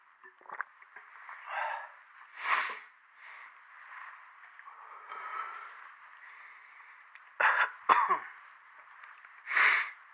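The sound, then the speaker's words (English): Raspy asthmatic wheezing breaths interrupted by several sharp coughs and throat-clearing bursts, coming in irregular fits over about ten seconds with no talking. “Some of that asthma.”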